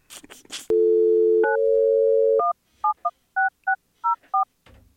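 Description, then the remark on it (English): After a brief rustle, a loud steady telephone dial tone hums for about two seconds as a call is placed to try to reach Russ Brandon at New Era Cap, then seven short keypad dialing beeps follow in quick succession before a soft click of noise. “Can we try to get Russ Brandon on the phone?”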